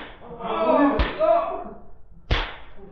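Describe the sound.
Two sharp, loud whip cracks about a second apart, each a sudden snapping lash, heard over a murmur of voices and a low background rumble, as a boss whips exhausted workers in a mine.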